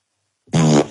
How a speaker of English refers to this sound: That one fart sounded extra beefy for some reason. I think the pause in between the two clips made it even gave it new life.